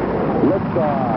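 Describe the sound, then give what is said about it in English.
A rocket liftoff sound effect: a steady, dense roaring rush of noise held for about a second, with a few faint wavering tones sliding across it. “All engine running.”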